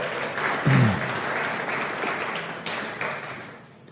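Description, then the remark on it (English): A church audience at a Mother's Day service claps and applauds steadily for a guest drummer from a sister church, a dense wash of many hands with a brief low vocal murmur early on, then the clapping thins and fades out at the end. “Let's hear it for Dan coming over.”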